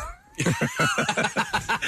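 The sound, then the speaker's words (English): A voice imitates a cat sitting on someone's lap, making a quick run of about eight short, whiny meow-like yowls in a steady rhythm, loud, with no words spoken. “And this cat would come and, like, jump up on my lap and just sit there and be like...”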